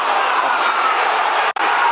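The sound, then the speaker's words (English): A big football crowd at a match against Rochdale roars its disapproval of an offside decision given against Steve Morrison on the halfway line, in a dense, unbroken wall of jeering noise that stays loud throughout, cutting out for a split second near the end. “Crowd disagreeing with that decision, as you can hear.”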